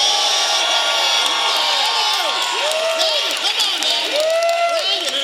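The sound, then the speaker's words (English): A large crowd shouts and cheers all at once, answering whether the speaker should continue or stop, a dense wall of many overlapping voices calling out loudly and steadily, with some higher yells rising above the roar. “You got about a quarter of the crowd, though, that says no.”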